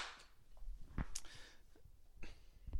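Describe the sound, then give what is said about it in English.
Several sharp hand claps struck right into a microphone, irregularly spaced, each a short, crisp burst against a quiet hiss, with no talking. “Bro, clap in the mic again, bro.”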